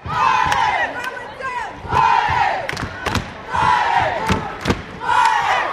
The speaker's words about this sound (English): In the Crow rooting section, emotions run high. War cries erupt at every Crow basket